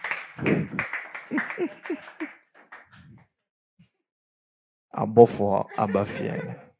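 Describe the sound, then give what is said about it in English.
A church audience claps for themselves, welcoming those from the diaspora, in a dense burst mixed with cheering voices, the applause fading out within a few seconds, then after a short pause a single voice starts speaking. “Clap for yourselves.”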